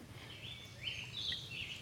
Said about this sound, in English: Thank you for filling the silence, little bird. Thank you.